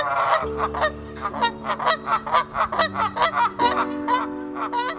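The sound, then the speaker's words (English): Geese honk loudly and continuously at a small pond in Riverside Cemetery, Marshalltown, Iowa, home to two resident geese, Blossom and Bud: a dense run of harsh, nasal calls overlapping in rapid bursts, with a steady low drone underneath. “And within the cemetery grounds lies a small pond, home to two resident gooses, geese, Blossom, and Bud.”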